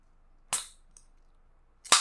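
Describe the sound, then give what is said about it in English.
A can of Finnish long drink is cracked open: a sharp pop followed by a brief fizzing hiss, a faint click, then a second crisp crack near the end, with no talking. “So cracking open the Finnish long drink.”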